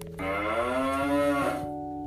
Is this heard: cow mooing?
yes